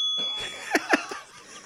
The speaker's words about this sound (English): I love the bell here at the end. Listen to the bell.